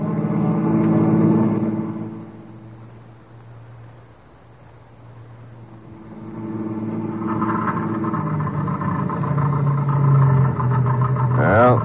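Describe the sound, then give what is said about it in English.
A car engine sputters as its fuel runs out, a steady rumble that fades and falters, then surges back unevenly before a final wavering whine. “The end of the gas.”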